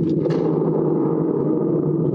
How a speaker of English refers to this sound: I was at the preview party last night, and we will talk about that, but I'll give you a preview. They got this thing called a thunder gourd.